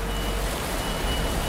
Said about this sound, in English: We walk along the corridors into an enormous hall where the bin trucks dump their loads into a huge pit.